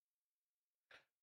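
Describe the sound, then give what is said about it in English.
A single sharp sneeze bursts out of near silence, loud, with a quick breathy fade lasting only a moment. “Sneeze incoming.”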